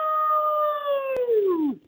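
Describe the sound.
A single sustained howl from a human voice imitating a wolf, starting steady and high, then sliding downward in pitch before trailing off. Fairly loud, with no other sounds.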